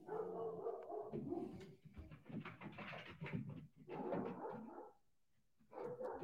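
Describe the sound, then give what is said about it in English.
Dogs bark in a frantic, overlapping flurry of yaps and whines, loud, pausing briefly near the end before starting up again. “These dogs are losing their minds.”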